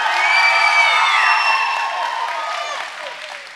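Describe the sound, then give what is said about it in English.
A crowd bursts into steady applause for the camp leaders, mixed with excited cheers and whoops, several high voices rising above the dense clapping before it gradually eases off. “That's where you give them a clap right there because they've worked really hard for camp.”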